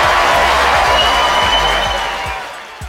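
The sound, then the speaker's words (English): Loud, dense applause with cheering from a crowd, a continuous wash of clapping and whoops that holds steady and then begins to fade toward the end. “Can we get some claps?”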